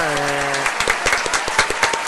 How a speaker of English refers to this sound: Motherfucking man, clap it up before you finish.